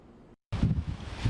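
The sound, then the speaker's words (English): Strong winds from Hurricane Idalia on Tybee Island, on Georgia's coast, roar and buffet the microphone in loud, rumbling gusts, following a brief low hiss and a moment of silence. No voices are heard. “Heavy winds on Tybee Island as Idalia came through Georgia's coast, some coming to see the crashing waves for themselves.”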